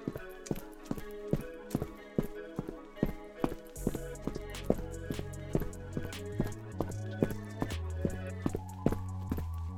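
Quick, evenly spaced footsteps clatter along at a hurried pace as someone rushes from a lift towards the laboratories, each step a sharp tap, with a low sustained drone swelling up underneath halfway through.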